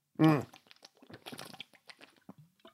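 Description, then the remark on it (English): Someone sips water from a bottle: a brief loud vocal exhale, then a string of soft wet mouth clicks, slurps and swallows, with no talking. “I'm sipping some water.”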